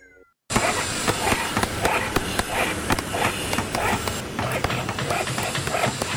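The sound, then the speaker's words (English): After a brief silence, a dog makes a steady run of noisy animal sounds, with rough breaths and scuffling textures continuing for several seconds. “Is that dog Phoenix?”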